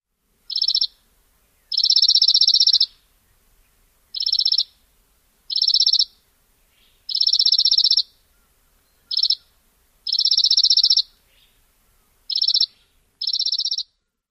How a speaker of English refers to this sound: Oftentimes, the chipping sparrow trill gets louder. This is another useful clue. In addition to varying speed, chipping sparrows can also vary the tone